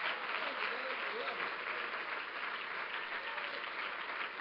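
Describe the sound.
A church audience claps their hands to the Lord in steady, dense applause as a visiting preacher comes up, continuous, with a faint murmur of voices mixed underneath.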